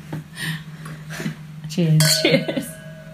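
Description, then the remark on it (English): Glasses of red wine, a 2017 Morgon Classique, clink together once in a toast, a bright chime whose ringing tone lingers for about a second, over a low steady hum and soft voices in the background. “Cheers. Cheers.”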